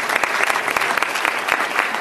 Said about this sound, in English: Let's give them another round of applause, all of them.